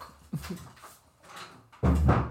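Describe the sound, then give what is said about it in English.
A door is opened to let a dog out: a soft thump and some shuffling, then a loud scraping rush as the door slides open at the end. Nobody speaks. “Let me let him out there. Get the hell out of here.”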